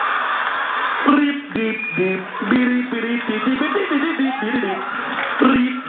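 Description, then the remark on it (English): A voice hums and sings the bouncy Super Mario Bros theme music from Nintendo without words, in short staccato notes over a noisy crowd backdrop, clear. “I start singing the Super Mario Brothers music from Nintendo.”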